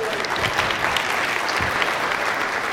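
A church audience claps steadily for a newly baptized member in a dense, continuous burst of applause, loud and even throughout with no voices standing out.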